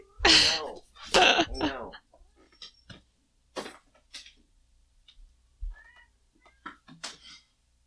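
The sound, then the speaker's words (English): A cat, Cozy, lets out two loud, drawn-out meows in quick succession while trying to pull a toy out of a shut door, followed by scattered softer rustles, scrapes and faint thuds as the toy is tugged and jostled. “Cozy is trying to pull a toy out of the door and I need to help her.”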